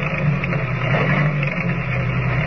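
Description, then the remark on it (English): The station agent's old car chugs along a winding road at night toward the Barrow Ranch, its ancient motor struggling with a low, rumbling drone and a constant hiss. The sound holds an even, moderately loud level throughout, with no voices. “With less than a mile to go, the stillness of the night is broken only by the steady chugging of the ancient motor as it struggles laboriously”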